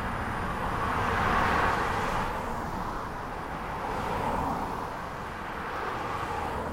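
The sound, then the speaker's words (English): Steady traffic noise on a downtown street in Gainesville, past the bars and nightclubs, with cars passing by in gentle swells that rise and fade over a constant roadway rumble, with no voices. “As cars drive by downtown Gainesville, past the bars and nightclubs, a little community center is making big improvements.”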